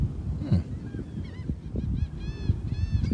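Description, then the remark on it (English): Seagulls cry out in a run of repeated, harsh squawking calls, several in quick succession, over a steady low rumble of outdoor background noise. “All I can hear is fucking seagulls fucking.”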